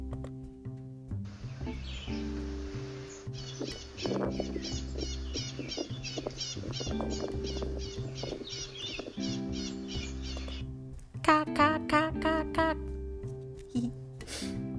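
An echo parakeet calls in a long run of quick, rhythmic high chirps, then a louder, harsher burst of squawks near the end, all over a steady low musical backing.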